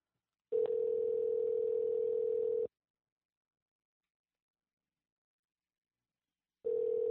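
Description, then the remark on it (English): A phone call to a seller of a silver flute and a ukulele rings out unanswered: a steady, mid-pitched ringback tone sounds for about two seconds, goes silent for roughly four, then starts again. No one speaks. “Oh, it's already saying no answer. It's probably not going to answer.”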